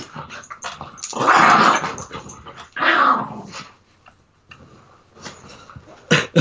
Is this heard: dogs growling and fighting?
yes